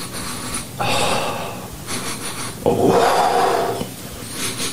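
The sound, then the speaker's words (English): Loud sniffing: two long, noisy inhalations through the nose with shorter breathy sniffs between them, as if someone is smelling something held right up to the face. No talking. “He's sniffing the pussy part and then slides down to where the ass crack goes.”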